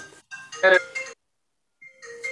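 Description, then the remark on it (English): A phone's electronic ringtone chimes out a bright tonal melody, playing one burst, pausing briefly, then starting again, fairly loud with no talking over it. “Don't worry about the phone.”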